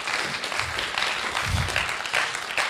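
A crowd applauds steadily, a dense wash of many hands clapping at once, sustained and fairly loud throughout with no pauses.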